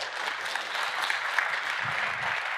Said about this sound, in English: Hey, man, why are you clapping? Please clap for the multi-site bishop. What a great word and his worship team. Praise God. Y'all can clap for, I meant it. Just clap for the bishop, man.